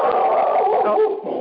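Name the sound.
dog barking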